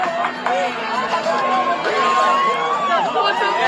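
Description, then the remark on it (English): A large crowd of several hundred high school students in Oakdale, California, refusing to wear masks after being sent to the gym. Dense, overlapping chatter and shouting voices form a steady loud babble with no single speaker standing out. “Yeah, large crowd.”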